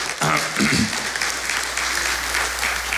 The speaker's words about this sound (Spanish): ¿Cuántos dicen amén? Denle al Señor un aplauso esta mañana.